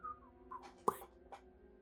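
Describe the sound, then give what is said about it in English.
A few short, faint whistled notes with a slightly falling pitch, broken up by a brief sharp click partway through, fairly quiet. “I'm just kind of like with whistling like.”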